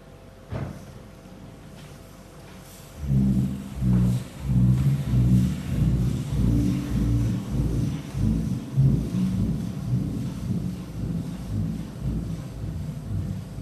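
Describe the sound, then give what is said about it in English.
Footsteps walking up the Kelso Dunes, a singing sand dune, in summer heat, set off a loud, deep booming drone, a low droning hum with pulsing swells that rises after a few quiet seconds and holds steady to the end. “That's actually my footsteps walking up the dune.”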